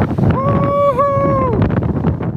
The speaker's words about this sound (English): Oh, my God, it's so windy out here.